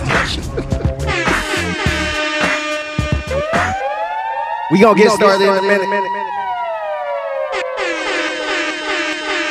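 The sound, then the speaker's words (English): A loud air horn sound effect blares in a series of stuttering, stacked blasts, joined by rising and falling siren-like wails before a final sustained blare. “Yeah, air horn.”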